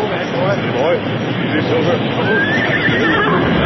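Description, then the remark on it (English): A horse named Silver neighs and whinnies a few times while standing in water about a foot deep, its shrill, wavering calls rising over the loud, continuous rushing roar of an oncoming wall of water that fills the whole scene. “Our horses are standing in water about a foot deep.”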